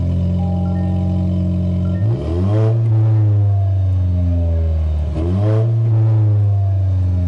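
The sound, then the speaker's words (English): A Toyota Tacoma truck, 3 inches wider than the standard Tacoma and on 33-inch tires, idles with its dual exhaust giving a deep, throaty rumble, then revs sharply twice, each blip rising and falling back to a steady growl. Loud, with no talking. “let's do the dual exhaust now.”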